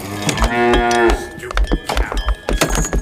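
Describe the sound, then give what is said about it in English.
A cow lets out one long, loud, drawn-out moo, followed by a series of scattered low thumps and clatter with no one talking. “Hey, cow, you got no shoes on.”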